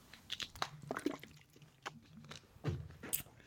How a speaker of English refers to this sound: Gonna drink the water.